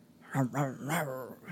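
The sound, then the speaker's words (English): A person's voice imitates the dog Hobo, giving a few quick, rough barks that run into a longer growling sound, fairly loud, with no other sounds around it, as a Firebird car pulls up outside. “And Hobo starts barking and growling, and Richard looks out the window.”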